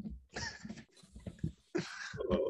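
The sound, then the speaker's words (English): A person imitates a dog barking with a string of short, gruff, fairly loud vocal bursts, uneven in rhythm, with a few breathy pauses between them. “That's how all dogs sound, by the way.”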